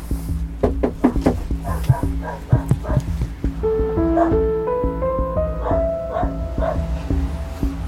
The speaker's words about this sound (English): Oh, hello. Hi, dog.